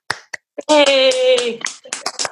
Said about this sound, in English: Unmute yourselves, everyone, and give him a good old clap.